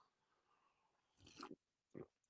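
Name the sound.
sipping coffee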